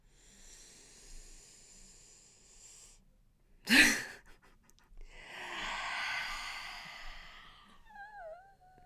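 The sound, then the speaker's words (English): A slow, drawn-out deep breath in, a brief sharp burst, then a long, breathy exhale, ending in faint wavering whistle-like tones. No one speaks. “And take a deep breath in.”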